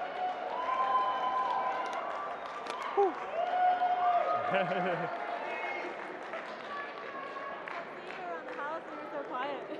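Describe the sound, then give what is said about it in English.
A crowd applauds the sound crew steadily for several seconds, dense clapping mixed with cheers and scattered shouting voices, fairly loud and sustained throughout without a break. “Can we get a round of applause for the sound guys?”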